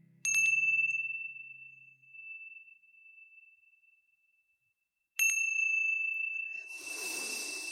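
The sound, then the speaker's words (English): A meditation chime is struck twice, about five seconds apart, to close a guided meditation; each bright, clear tone rings out and slowly fades, with a soft rustling hiss rising beneath the second ring. “When you hear the sounds of the chimes, gently coming back into this space.”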